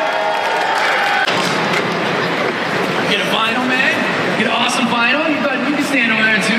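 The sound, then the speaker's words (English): A crowd applauds and cheers steadily for several seconds for the third-place winner of a contest, a dense wash of clapping and whoops with excited voices shouting over it, staying loud throughout. “Give it up”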